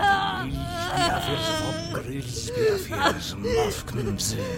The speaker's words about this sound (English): The corpse began to twitch, convulse, and a tortured scream left her melted lips.